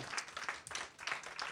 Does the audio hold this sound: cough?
no